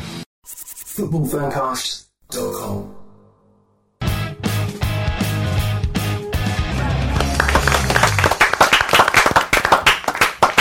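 A live audience claps together in the evening, starting after a short musical burst and building into loud, steady applause with sharp rhythmic hand claps in the final seconds.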